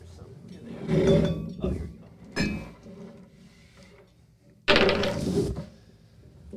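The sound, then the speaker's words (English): Rummaging for dice: objects clatter and shift in several uneven bursts, with drawer-like knocks and small clinks, as someone digs through a container to find dice. A faint background murmur sits underneath. “We got to find the dice.”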